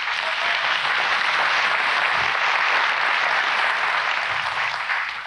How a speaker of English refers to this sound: And those hand claps were for some of you women who are in that situation. That's for you.